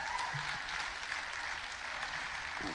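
An audience applauds, many hands clapping in a dense, steady wash of sound that holds at an even loudness for about three seconds, with no voices standing out.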